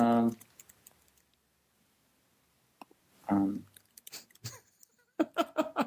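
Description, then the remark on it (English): Scattered computer keyboard clicks tap out at an irregular pace, quiet, while voices speak briefly at the start, middle and end. “Can you hear him typing down?”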